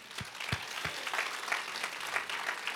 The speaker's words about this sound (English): Y'all can give God a hand clap of praise.